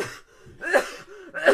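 Two short, harsh coughs about a second apart, fairly loud, with a faint breathy sound before them and no talking.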